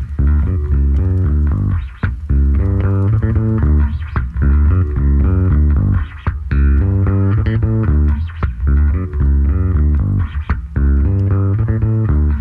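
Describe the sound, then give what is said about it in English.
A bass guitar plays a steady, melodic line of low notes, with brief squeaky slides along the strings now and then as the player shifts position. No voices are heard. “fret squeak as he goes.”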